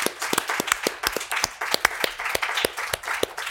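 An audience applauds steadily, many hands clapping in a dense, crackling patter with some sharper individual claps standing out, holding a fairly even level throughout without any voices.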